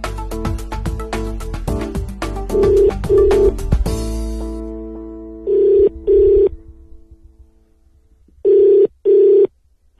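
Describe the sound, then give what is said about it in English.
A flurry of quick dialing tones and clicks gives way to a telephone ringing tone for a call placed from Johannesburg: two double rings, each a pair of short buzzing bursts, separated by silence. No one speaks. “I'm a sports journalist phoning from Johannesburg.”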